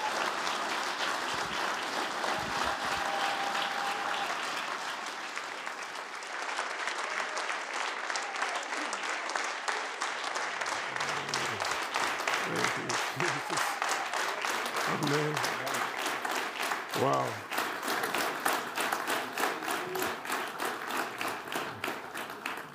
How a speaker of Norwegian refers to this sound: Jeg tror vi reiser oss og gir han en skikkelig god klapp.